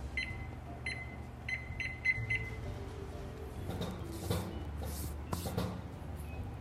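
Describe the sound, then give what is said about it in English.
A kitchen timer being set for 25 minutes as a pan of egg-washed dough rolls goes into the preheated oven: six short, bright electronic beeps in an irregular button-press rhythm, followed by soft clattering and rustling handling noise. “Okay, set a timer for 25 minutes.”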